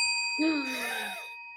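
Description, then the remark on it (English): A bell's bright metallic ring sustains steadily throughout, fading slightly at the end, while a person's voice makes a drawn-out groaning vocal sound over the middle of it. The bell is dinged to start round one. “Do you want me to say it and then ding the bell?”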